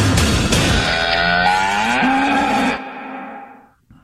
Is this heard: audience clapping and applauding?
no